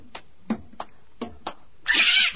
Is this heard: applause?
no